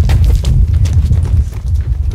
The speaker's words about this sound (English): and they just sort of walked us through these old tunnels. You scared? A little bit, yeah. And you're walking through the black, and all you hear is like the sound of our feet crunching.